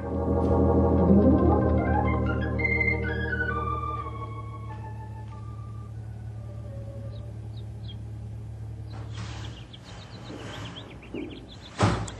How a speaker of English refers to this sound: There you go, slamming that there screen door again. Won't you never learn?